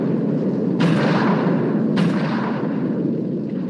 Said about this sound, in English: Oh, and some gunfire. Yep. Is that a shotgun? Oh, yeah.